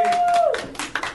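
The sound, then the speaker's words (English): A brief burst of applause greeting a speaker who says he will stop drinking and go on a juice cleanse: a few scattered claps following a steady tone that slides downward, moderately loud. “Don't applaud stopping drinking.”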